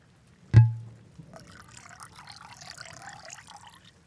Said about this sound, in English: Okay, computer's charged. I'm gonna pour myself some wine and see what I can find.